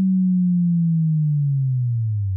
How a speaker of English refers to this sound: The fundamental of most booges are made by some sort of basic wave, a common choice being a sine wave, which has no harmonics. Then you give it a nice, smooth pitch down.